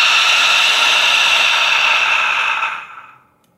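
A single loud, forceful lion's breath exhale through an open mouth with the tongue out, during a breathing exercise, a breathy hiss rich in high tones that holds steady for over two seconds before trailing off. No one speaks.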